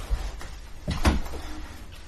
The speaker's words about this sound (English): These doors grind open. And these doors grind open.